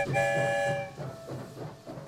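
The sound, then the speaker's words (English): A story train sound effect as the train leaves the Rainbow Tunnel: its horn sounds in a loud, sustained blast that fades into a lingering tone over rumbling, rhythmic clatter of the train rolling along, with no voices. “I wonder where the story train will lead us this time. Here comes the end of the tunnel.”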